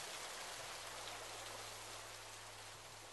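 Steady rain falls continuously on earth, a dense hiss of countless drops striking the ground, with a faint low hum running underneath and no voices.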